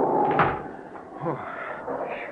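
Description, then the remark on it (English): A door swings shut with a single solid knock, followed by a little rattling and settling against a steady background rush of wind outside. “I'll bolt this door so the wind won't rip it open.”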